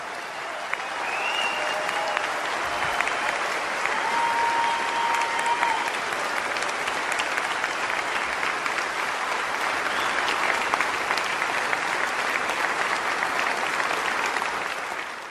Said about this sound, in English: Now, with all Pearl Harbor survivors and World War II veterans remaining seated, will everyone else please stand and join me in expressing our appreciation? A grateful nation applauds you today.